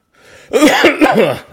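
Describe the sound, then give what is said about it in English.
A quick burst of three or four harsh, raspy coughs in close succession, loud, with no talking around them. “there's actually a mute button on your side that you can mute yourself from coughing.”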